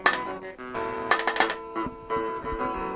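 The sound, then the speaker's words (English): A run of sharp, clacky mechanical keyboard key presses in an irregular burst of several quick clicks, followed by a few slower, spaced taps over a steady background hum. “One of the nicest things about electronics to me is good clacky keys.”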